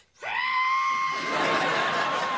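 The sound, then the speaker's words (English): A voice imitates a sustained, high screech-like whistle, rising sharply then holding a steady piercing tone with a harsh, breathy edge for about two seconds, loud. “In the bathroom taking a shave, and I heard a screeching, solid between a screech and a whistle.”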